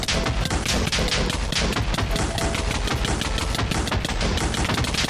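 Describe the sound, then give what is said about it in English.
Rapid, continuous bursts of video game bed explosions as a load of beds is blown up at a small base of operations, loud and dense like a barrage of gunfire, crackling across five seconds with no pause and no talking. “And let's make a load of beds. And let's start blowing stuff up.”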